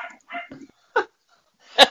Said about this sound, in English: And the dog agrees, too.